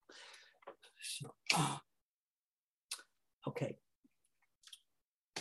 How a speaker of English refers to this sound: Annoying cough, so you'll have to forgive me.